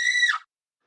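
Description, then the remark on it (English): A single short, shrill scream, high and steady for about half a second before its pitch drops away and it cuts off into silence. “You know, it's like you're free falling. Then you start screaming.”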